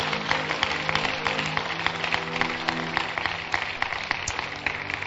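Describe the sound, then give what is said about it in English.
An audience claps their hands in a dense, steady burst of applause lasting several seconds, with a low sustained hum running underneath and no voices. “Clap your hands.”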